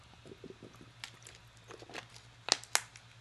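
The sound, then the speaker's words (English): Someone takes a quiet sip of Savorta: soft wet slurping and mouth noises, ending with a couple of sharper gulps or lip smacks, with no talking. “Sip of Savorta.”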